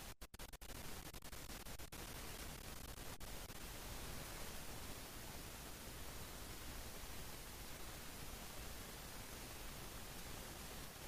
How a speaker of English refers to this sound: Have you got that big white noise coming through at the moment? Yeah. Yeah, what is that?